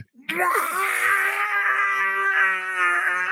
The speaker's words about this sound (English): That's when you hear the scream of what could only be a kindred in frenzy.